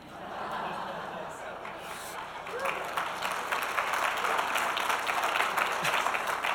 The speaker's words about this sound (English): Why do you guys always applaud for her?